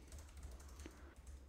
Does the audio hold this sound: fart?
no